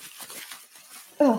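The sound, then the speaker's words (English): Soft, continuous crinkling and rustling of tissue paper in a purple gift bag being opened, uneven in texture, cut off at the end by a brief, louder burst of voice. “Got some tissue paper in there”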